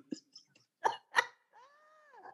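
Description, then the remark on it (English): Two sharp coughs in quick succession, preceded by a couple of small throaty clicks and followed by a brief drawn-out vocal groan. “I knew that cough was gonna get me.”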